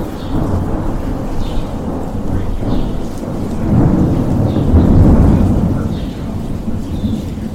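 Steady rain pours down during a lightning storm while a deep, rolling rumble of thunder builds and swells through the middle, then fades back under the constant hiss of the downpour.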